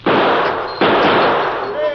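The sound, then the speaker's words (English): Two loud gunshots as Calamity shoots the tops off bottles, the second about a second after the first, each followed by a noisy roar that fades slightly, with a thin ringing tone near the end. “Let her buck, boys, Calamity slinging lead.”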